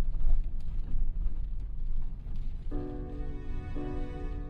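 Steady low rumble of a car interior on the move, with a droning engine-like tone rising over the road noise in the second half; no voices.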